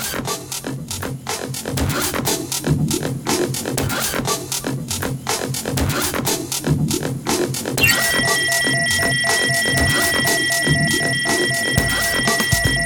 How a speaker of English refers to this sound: Somebody shut that alarm off.